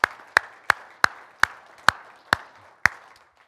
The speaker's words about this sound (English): These are some of the people involved in making Grace Camp XP 2022 a success, ensuring that the gospel goes forth with clarity and authority. So let's give them a round of applause this morning.